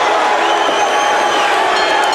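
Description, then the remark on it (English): A large wrestling arena crowd roars and cheers continuously after Lex Luger wins a match against Flying Brian Pillman, a dense wash of shouting voices and whoops that stays loud and steady throughout, with no single voice standing out. “And look at that, Lex Luger, you're the crowd. It's clear they're 50-50 here.”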